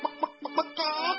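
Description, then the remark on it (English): A human voice imitates a chicken, with a few short, rhythmic clucks followed by a longer drawn-out squawking call, fairly loud with no other talk. “Oh, no. I'm talking like a chicken.”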